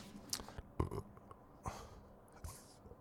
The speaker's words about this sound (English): Now, I've done something that I don't recommend, talking while there is still food in my mouth. So that made me gulp, because I had to swallow my food suddenly all at once.